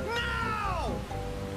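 A single drawn-out meow from a cat, rising and then sliding down in pitch over about a second, clear, followed by a faint steady hum.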